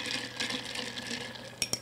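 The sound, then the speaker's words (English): Ice swirls and rattles in a glass as a drink is stirred, a soft continuous churning that ends with two sharp, bright clinks in quick succession. “I'm just going to like mix it all up now.”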